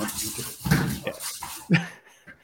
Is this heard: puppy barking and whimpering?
yes